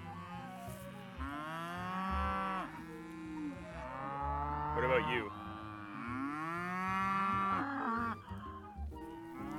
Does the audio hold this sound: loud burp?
no